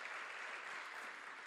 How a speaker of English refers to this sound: I'm really praying for a reset. We can clap.